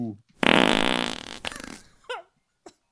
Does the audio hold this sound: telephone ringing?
no